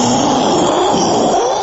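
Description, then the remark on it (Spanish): A voice imitates loud thunder with a steady, rough rumbling hiss that holds strong for under two seconds without any break or clear words. “Si oye un fuerte trueno, haga un fuerte trueno, por favor.”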